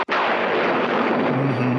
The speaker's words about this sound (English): I bet most of the people out there know what that thunder is from. Yeah, you see the dark sky above the castle, and when it strikes, the bats fly across the light.